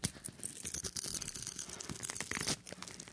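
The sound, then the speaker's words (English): An agenda paper being ripped and torn to shreds, a continuous series of sharp, crinkly tearing bursts for about three seconds, with no voices. “is tearing this up to shreds”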